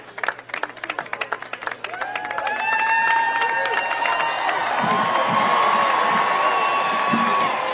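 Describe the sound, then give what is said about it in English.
Biden trips on a sandbag and falls head first on a stage after giving a speech at the Air Force Academy, a quick run of heavy bumps and thuds heard over a large crowd's clapping, which swells into loud, sustained cheering and whistling. “Now, that bumping that you hear there, that is not like drums playing or something ceremonial.”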